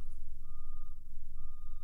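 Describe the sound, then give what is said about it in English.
Two long, steady electronic beeps from a reversing truck, evenly spaced, sounding over a low engine rumble with no one talking. “Do you hear the truck now?”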